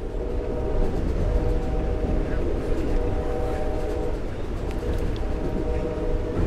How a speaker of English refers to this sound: We go through Welsh, another small town on our journey. The train is now nearing Lake Charles, passing yet more sidings of freight trucks.